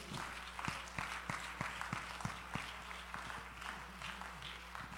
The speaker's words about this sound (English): Would you give God a hand clap of praise here?